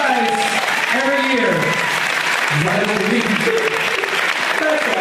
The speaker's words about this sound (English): These signs are amazing, you guys. Round of applause for all your signs.